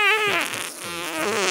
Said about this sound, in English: If you're listening, Tom, put a little fart sound in here.